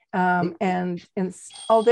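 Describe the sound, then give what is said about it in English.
A phone app's reminder alarm tone plays in several loud, buzzy, harmonic bursts, followed by a thin, high-pitched electronic beep that holds steady at the end. “There's the alarm. I just wanted to show you.”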